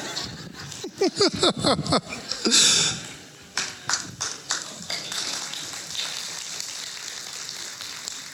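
An audience breaks into applause for the speaker not playing a guitar, starting with a few sharp claps mixed with voices or laughter, then settling into a steady, moderately loud patter of clapping that continues to the end.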